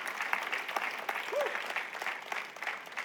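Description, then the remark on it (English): An audience applauds steadily, a dense wash of many hands clapping at once, sustained at an even, moderate level for a few seconds without anyone speaking over it. “I'm gonna say it again because y'all didn't clap.”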